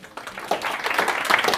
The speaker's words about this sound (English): I'd like to welcome our guest of the day. Can I have a big round of applause all the way from London?